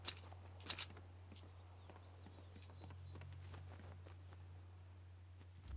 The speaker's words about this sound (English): I don't think anybody's coming. Those are your footsteps.